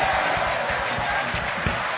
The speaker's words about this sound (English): Clap your hand for the crusade brother. He's a crusade brother.